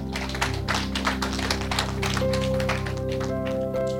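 An audience claps for the Lord Jesus, steady in a quick, even rhythm, the sharp claps running throughout over sustained keyboard or organ tones, with no one speaking.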